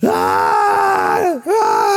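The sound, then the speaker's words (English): A voice imitates a toddler waking at about 3 o'clock in the morning and screaming: a loud, sustained high-pitched cry that holds steady, dips sharply in pitch and breaks briefly, then rises again into another wail. “But at nighttime, about 3 o'clock in the morning, Beckham will wake up and start screaming.”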